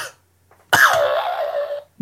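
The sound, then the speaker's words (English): A single deliberate, forced cough: a sharp raspy burst that stretches into a strained, droning tail lasting about a second, then stops abruptly. No talking. “You gotta cough a little bit and then stop.”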